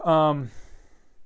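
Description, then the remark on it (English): A single voiced yawn with a falling pitch, fading into a breathy exhale after about half a second, then quiet breathing. “Excuse me as I yawn.”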